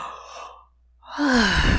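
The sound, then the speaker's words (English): A big open-mouthed yawn, loud: an airy deep inhale through the mouth, a short pause, then a long breathy exhale with a voiced groan sliding downward in pitch. “So just inhale deeply, just go, I mean, through the mouth, just a big yawn.”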